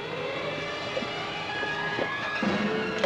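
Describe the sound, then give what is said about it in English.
A car engine runs steadily, a hose led from its tailpipe into a trailer, a constant droning hum with faint whining tones riding on top, moderately loud, with no voices. “What's that noise? It's the motor on that car.”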